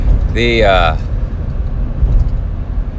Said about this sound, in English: But anyway, being crowded in traffic here. Some brave lady is trying to cut in on it.